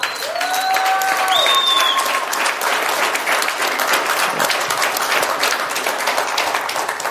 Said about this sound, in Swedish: Så tack! En stor applåd